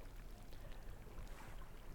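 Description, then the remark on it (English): Crystal clear water laps steadily against a beach in Antarctica, a continuous soft wash with a low rumbling undertone and a breathy, wind-like hiss, with no voices present. “And then there's the lapping water on the beach.”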